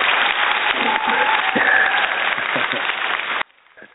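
A crowd applauds steadily to welcome a guest on the Dr. Geneva Speak Show, a dense wash of clapping that holds at an even loudness for about three and a half seconds before cutting off abruptly, leaving faint room noise.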